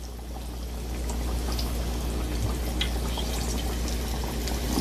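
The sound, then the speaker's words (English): A steady, dense crackle and sizzle of chicken pieces frying in hot oil in a pan, continuous, with scattered pops over a low background hum and no one talking. “Now, when you're frying, of course, when you're doing it in a pan like this, you don't want to crowd the pan because it'll drop the oil temperature.”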